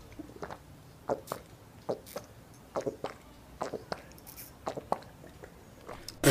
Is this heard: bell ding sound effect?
no